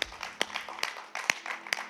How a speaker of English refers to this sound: Can we just give God a round of applause?